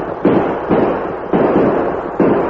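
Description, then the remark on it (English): Four loud gunshots fired from horseback ring out at uneven intervals, each a sharp crack followed by a long, rumbling echo that blends into the next. No one speaks. “Can't shoot good from a horse against men riding like that.”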